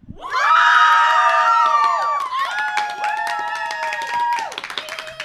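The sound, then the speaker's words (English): A raucous sellout crowd of hundreds at a live show at Rod Laver Arena cheers loudly, with sustained whooping voices over a crackle of clapping. The roar holds steady for several seconds before thinning slightly at the end. “Oh, that is a rousing response. That's a raucous crowd.”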